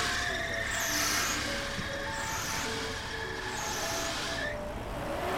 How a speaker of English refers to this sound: Here we go. Just driving down a heavily forested mountain now in mid-Germany to where we'll be spending the night.